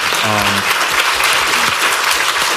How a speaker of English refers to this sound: So, big round of applause for our guests.